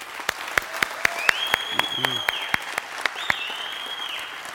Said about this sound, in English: Whatever it is, men, let's give them a round of applause or whatever it is. Do it right now.